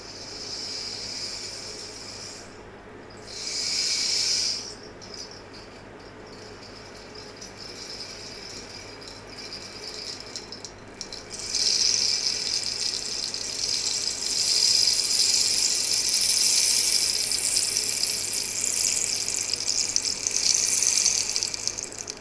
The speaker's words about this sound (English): As its name indicates, rain sticks produce a sound similar to that of falling rain and are used for inducing states of peace and calm.